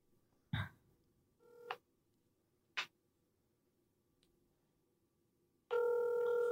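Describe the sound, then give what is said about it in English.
A few taps and a short beep from a phone, then a steady ringing tone starts near the end as an outgoing call rings with no answer. No one speaks. “Both of them won't answer the phone.”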